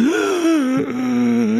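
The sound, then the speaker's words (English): A single voice lets out a drawn-out, theatrical gasp that stretches into a wavering moan, loud, with a brief breathy catch midway and no other sounds around it. “Gasp. Shock.”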